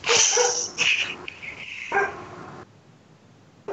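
Random dogs, not the speaker's own, bark loudly in three quick bursts, the sharp yaps trailing into a quiet pause, with no one speaking.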